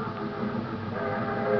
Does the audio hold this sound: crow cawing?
no